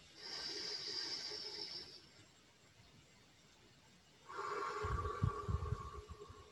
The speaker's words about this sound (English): Let's take a few breaths to center and anchor, and across time and space, just breathe together for a minute as we begin this hour of worship together. Another deep breath in.